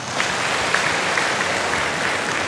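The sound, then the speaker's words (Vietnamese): A crowd claps steadily, a dense, even patter of many hands sustained throughout without any talking over it. “Con nói được một ý rất đúng, cho tràng pháo tay.”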